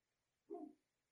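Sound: neighbor's dog barking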